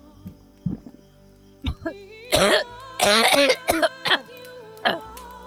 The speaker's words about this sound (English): She had never tried scotch before. And she'd always wondered what it would be like. After a moment of basking it in, she drank the fiery liquid straight down and coughed up a storm.